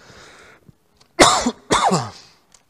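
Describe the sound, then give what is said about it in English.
A preacher giving a sermon coughs twice, loudly and harshly, with a short pause between the coughs, preceded by a soft breathy rasp like a throat being cleared. No talking. “I ran out of cough drops here.”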